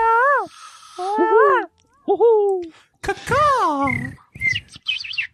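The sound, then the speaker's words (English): A person's voice mimics a bird call with a series of high, warbling, sliding whistles and squawks, loud, in several bursts over a few seconds. “Bird call to scatter the bird call votes here.”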